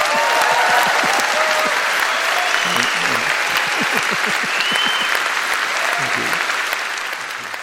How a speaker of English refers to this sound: He is, in my opinion, a great man. Please give Terry Gilliam a warm round of applause.